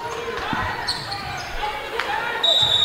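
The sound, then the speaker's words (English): A referee's whistle, calling a travel in the third quarter of a Saugatuck basketball game, lets out one sharp, sustained high-pitched blast near the end, cutting over a busy murmur of crowd voices and bouncing basketballs. “Whistle blows, and we have a travel against Martin.”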